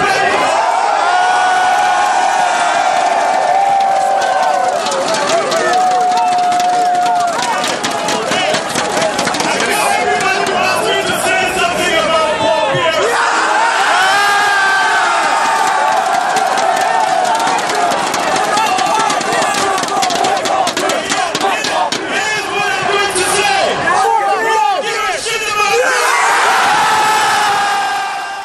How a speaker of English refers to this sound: So here's Masai Ujiri. And you can also hear the crowd in this yelling, fuck Paul Pierce.